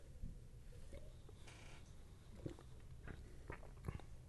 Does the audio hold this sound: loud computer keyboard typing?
no